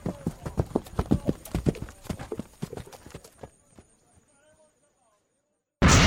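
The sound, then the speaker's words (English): Hooves of horses being ridden clip-clop in a quick, steady rhythm, then grow fainter and fade into near silence before a sudden loud burst of noise at the very end. “Alright, and you guys mount up on your horses.”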